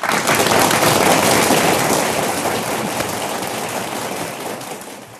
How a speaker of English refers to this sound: I am here for that applause. Thank you. Yes, that feels really great. I like to surprise the guests with my little tricks back here.